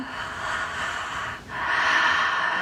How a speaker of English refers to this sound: Deep breath, bring it in, expand it into your entire being. Breathe it in and exhale it down to your sacrum.